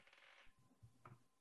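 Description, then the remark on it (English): Dice clatter and rattle briefly across a hard tabletop, a quick burst of small tumbling clicks followed by a couple of softer taps as they settle. Fairly quiet, with no voices. “We need to get you two new dice.”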